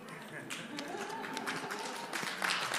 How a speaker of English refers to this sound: No, you don't have to applaud me, please.